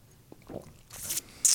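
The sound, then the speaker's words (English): Someone knocks back a shot of warm tequila: a soft wet gulp, then two sharp, breathy hissing exhales, with no talking. “I'm not shooting this. I'm sipping it just for the record. Are you? I'm shooting it.”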